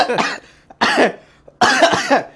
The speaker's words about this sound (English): I'm trying not to cough.